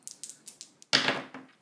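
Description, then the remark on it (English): A quick series of light, sharp clicks, like dice shaken in a hand, then a louder clattering tumble as two six-sided dice hit a hard surface and skitter to a stop, rolled for a game check; they total 3. “you roll 2 6-sided dice and you add the relevant statistic mm-hmm.”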